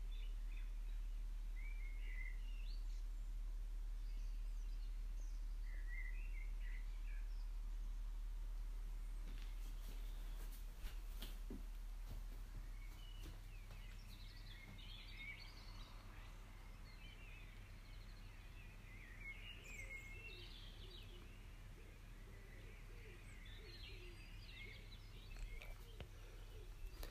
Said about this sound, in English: I don't know if this will pick up the birds, but this morning there are beautiful sounds. And just take a moment to listen.